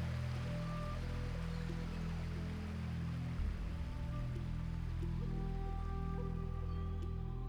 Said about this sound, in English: What's our plan for getting across this this river? I think we're going to have to wade. It's not too deep, but the water's pretty strong.